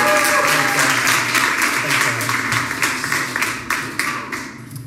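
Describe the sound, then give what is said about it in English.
A church audience applauds steadily to welcome a preacher up, a dense wash of clapping that holds loud for several seconds and thins slightly toward the end, with a faint murmur of voices underneath. “So why don't you guys give him a round of applause.”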